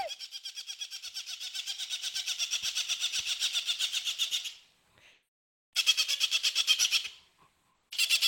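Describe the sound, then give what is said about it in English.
A shrill, rapid-fire bird squawk like a hawk's call, loud, in three bursts: one long stretch, then two shorter ones after brief pauses. No talking. “Almost sounds like a frickin' hawk or a falcon call.”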